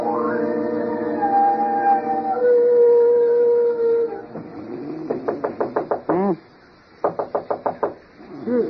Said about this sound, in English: Who's there? Who's doing that? Somebody's at the door of this iceberg they call a bedroom.